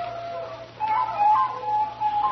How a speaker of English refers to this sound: No, it ain't. It's just a dog, an Armstrong hound. No Armstrong ever had that kind of music in him.